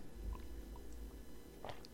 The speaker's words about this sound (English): I need a sip of this wine.